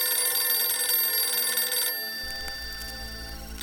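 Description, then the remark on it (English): A red priority-line telephone bell rings loudly and continuously in a bright metallic rattle for about two seconds for an evening call, then fades into a softer lingering tone over a low hum, with no voices. “The red phone, an evening call.”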